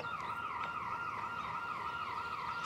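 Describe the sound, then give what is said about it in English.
An electronic alarm wails continuously, its pitch sweeping up and down in a steady, repeating cycle, loud with no voices, swelling slightly at the end. “Damn alarm.”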